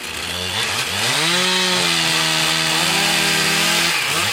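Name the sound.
chainsaw cutting wood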